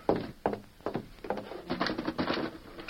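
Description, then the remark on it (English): A wooden door is pushed shut with a few dull thumps, followed by a busy stretch of knocking and rattling, moderately loud, with no voices. “I'll close the door.”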